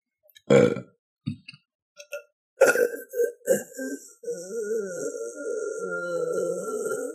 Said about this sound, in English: That was like 1% burp.